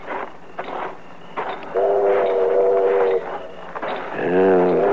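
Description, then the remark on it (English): A train pulling into a station: steady rumbling and clatter, broken by two long steam-whistle blasts, the second louder with a slightly wavering pitch. No one speaks. “The train's pulling in.”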